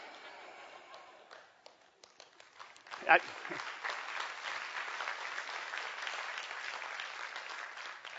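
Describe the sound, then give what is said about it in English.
An audience applauds, starting with a few scattered claps that quickly swell into steady, dense clapping which holds at an even level until the end. “You're clapping because I didn't go into song at that point, right?”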